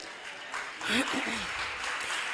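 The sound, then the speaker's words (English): An audience claps in a dense, steady wash of applause lasting a couple of seconds, with a voice speaking briefly over the middle of it. “So, as you clap, when you go through the turbulence of life, you gotta trust that God knows what he's doing.”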